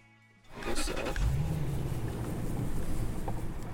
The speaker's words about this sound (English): is bouncing along in a truck. He's driving on a dirt road towards Mongolia's Altai Mountains.